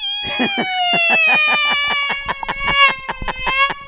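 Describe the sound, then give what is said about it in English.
A voice imitates the grating noise of an old Mazda 626 car's window being rolled down: a sustained, high, whiny squeal chopped by rapid rhythmic pulses for about four seconds, loud and harsh. “Go, and remember when I'd roll down the window, and go.”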